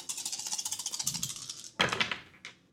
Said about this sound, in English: Irresponsible dice rolling, minus one. Just going to go for it.